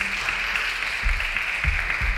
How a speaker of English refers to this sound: Let's put our hands together for the King of Kings and Lord of Lords this morning, the Lord God Almighty.